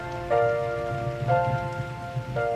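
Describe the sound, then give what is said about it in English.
Steady rain patters continuously against a surface, while a sustained tonal chime swells in about once a second and hangs over the hiss. “Gee, I'm glad it's raining.”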